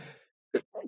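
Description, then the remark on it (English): A single loud sneeze into a microphone: a breathy intake, a brief pause, then a sharp burst followed by a short trailing exhale. “I'm about to sneeze right into this microphone.”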